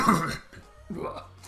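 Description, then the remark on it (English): A harsh cough right into a microphone, followed a moment later by a softer second throaty burst, with a faint low hum underneath. “And also you can just spend your time coughing into microphones.”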